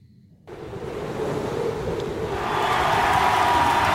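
A large crowd cheers and applauds as Joe Mandy comes out at the opening of his album, the dense roar kicking in abruptly after a brief quiet moment and swelling louder toward the end, steady and continuous with no clear individual voices.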